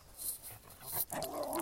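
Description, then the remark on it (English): A snippy dog behind a fence growls and whimpers in short, agitated bursts, with a snappish edge and no one speaking over it. “Oh, dog in the cage, bud. Or dog behind the fence. Yeah, that one kind of, he's kind of snippy, isn't he?”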